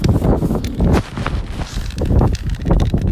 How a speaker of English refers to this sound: So it's windy, it's chilly, and I'm on my way to Temperance.